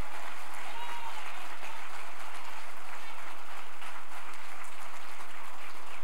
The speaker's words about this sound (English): Stand on your feet and give God a hand praise, a hand clap like you've never done it before. Give him a hand clap like somebody famous just walked through the door. Give him a hand clap.